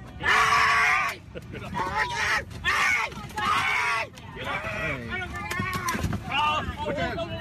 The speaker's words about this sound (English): And then the guy screaming is they're dragging him down the aisle.